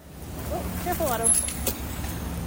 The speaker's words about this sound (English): I'm on a packed bus with my four-year-old son. He's on my lap. That's how full it is.